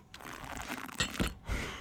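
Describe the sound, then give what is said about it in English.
A noisy slurp of hot coffee, a short airy sucking sound with a couple of wet bursts, heard on its own with no talking. “I feel like I really should have slurped that more.”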